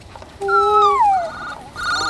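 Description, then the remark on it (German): A mobile phone rings with a loud electronic ringtone, a run of sustained melodic tones that slide in pitch, then start again after a short gap. “Wessen Handy klingelt hier eigentlich die ganze Zeit?”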